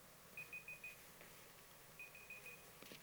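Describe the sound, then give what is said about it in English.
Two quick bursts of high-pitched electronic beeps, each a rapid series of four short tones, sounding faint against a quiet background hum. “What's beeping?”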